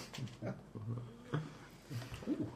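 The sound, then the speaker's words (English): A person growls and barks in imitation of a big, fierce dog, making a quick string of five or so gruff, rumbling yaps. The voice is moderately loud. “I'll get my dog out. He's big and quite ferocious.”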